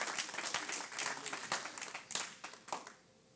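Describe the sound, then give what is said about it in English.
Scattered, sparse clapping from a small church audience, uneven hand claps fading out over a few seconds, fairly quiet with no voices over it. “The question is, and by the small claps that we got, how much of God do you want?”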